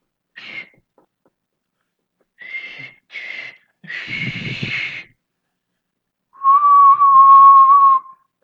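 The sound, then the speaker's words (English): A person imitates a lifeguard's long whistle blast with their mouth, the signal for patrons to get out of the pool: a few short breathy, hissing bursts, then one sustained, steady whistled tone lasting over a second, fairly loud. “3rd guard deals with the patrons. They blow the long whistle.”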